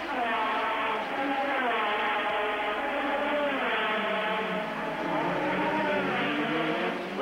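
A continuous, buzzing whine of Formula One race cars roars past at the 1985 Monaco Grand Prix, with the engine pitch gliding up and down as the cars go by. The sound is loud, steady and thin, like an old TV broadcast.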